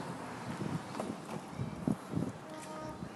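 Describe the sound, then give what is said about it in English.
On a windy day, a flag's hardware clanks against a metal pole in a few irregular, hollow knocks over a steady outdoor wind rush. “That's the sound of a flag clanking against its pole.”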